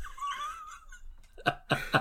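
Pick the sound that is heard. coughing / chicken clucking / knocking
coughing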